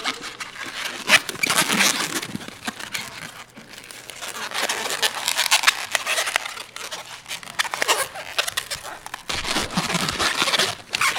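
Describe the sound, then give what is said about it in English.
An old rubber balloon is twisted and handled while making the body and back legs of a balloon animal. It gives a continuous run of squeaky, crinkly rubbing and scraping with irregular bursts, steady and moderately loud throughout, with no talking. “Now doing the body and the back legs. This is actually the part that sort of every animal you make out of balloons.”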